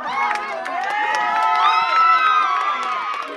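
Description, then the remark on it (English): A crowd of employees erupts in loud, sustained cheering, with many overlapping shouts, whoops and high excited voices blending into a steady roar for several seconds, as a court decision cancelling a sale is announced over the phone by a lawyer. “And they announced it, and the lawyer, they were on the phone with a lawyer, and it just erupted. Everyone erupted.”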